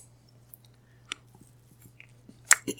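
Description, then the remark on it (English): Faint, irregular wet chewing and crunching clicks, a few sharper bites toward the end, heard through a narrow, tinny phone line over a low steady hum. “There's a sound from the receiver, like chewing.”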